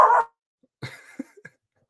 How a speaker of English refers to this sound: There's my dog.